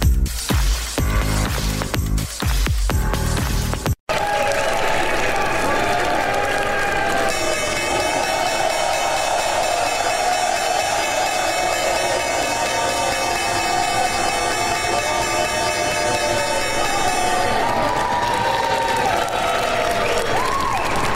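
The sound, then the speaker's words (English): The New York Stock Exchange opening bell, rung by Crown Castle, rings in a long, steady electric peal for about ten seconds over continuous loud applause and cheering from a crowd, after a brief musical sting. “That was the opening bell at the New York Stock Exchange.”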